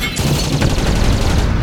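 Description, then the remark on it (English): Spaceship engines exploding: a loud, continuous roar of booming blasts and rapid crackling bursts, heavy in the low end, sustained throughout with no voices. “Oh, God, there go my engines.”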